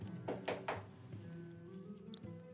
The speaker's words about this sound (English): Let's just knock, knock.